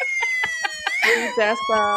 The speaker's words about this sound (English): Okay, this is what's this supposed... trying to put a siren on. Oh, why does it have an intro too? Okay. There you go.